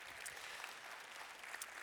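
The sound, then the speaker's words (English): A large crowd claps their hands together for an offering in a steady, dense wash of applause, many overlapping claps blending into a continuous soft roar, with no voices. “Can we clap our hands one more time for the overflow offering?”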